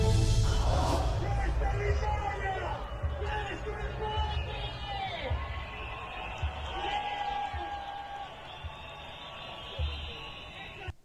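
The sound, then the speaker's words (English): A massive crowd at the Circus Maximus in Rome, Italy, protesting against Italy's health pass, roars in a steady, dense wash of voices, with scattered shouts and a few high whistles rising above the continuous low rumble throughout. “A massive crowd in Rome, Italy, in the Circus Maximus, a place where people have gone for thousands of years, actually.”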